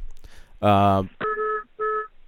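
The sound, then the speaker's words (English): A loud, buzzy electronic beep rings out, then two shorter, steadier two-tone beeps follow in quick succession, like phone keypad tones. “Okay, I just heard a beeping sound.”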